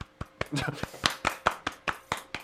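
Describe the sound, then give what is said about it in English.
A quick run of about a dozen sharp hand claps, steady in rhythm, exaggerated and a little uneven, with a brief vocal sound mixed in near the start: an imitation of the 'Kamala clap', also called the seal clap or Pelosi clap. “Which could also be called the seal clap.”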